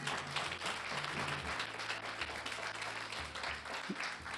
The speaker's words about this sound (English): Everybody clap for that. Clap for that. Your Aaron. Clap for that. Your Aaron.